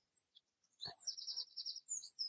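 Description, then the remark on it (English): Birds tweet and chirp outdoors, heard through an open bedroom window, in a quick, lively run of high calls, fairly faint, with a brief knock partway through and no talking. “Okay, the birds tweeting in the background.”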